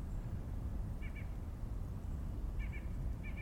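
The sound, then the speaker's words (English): White-breasted nuthatch calls: short nasal notes that come in quick pairs, repeated three times over a steady low rumble of outdoor background noise. “I'm hearing some white-breasted nuthatches.”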